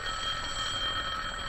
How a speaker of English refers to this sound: Yes, Mr. Benny? Answer the phone, will you, Dennis? Okay.